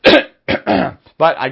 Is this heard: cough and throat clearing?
yes